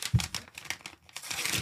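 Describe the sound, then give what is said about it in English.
A paper envelope holding an essay is opened with a run of crisp crinkling and rustling, and a short tearing rip near the start. It is quiet and unhurried, with no voices. “Here, hold on. Let me open this up.”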